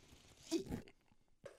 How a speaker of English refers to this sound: I'm going to take another sip of coffee. How long have we been going here? 26 minutes and only three sips.